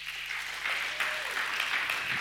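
Steady crowd applause, a dense wash of many hands clapping at once, moderately loud and sustained for the whole stretch with no voices rising above it.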